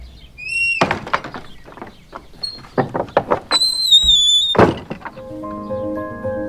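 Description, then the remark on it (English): A door is unlatched and opened for the arriving visitor Mr. Abdallah: a rapid series of wooden clunks and rattles, a high squeaky hinge squeal, then a heavy thud, followed by a faint lingering tonal hum. “open the door.”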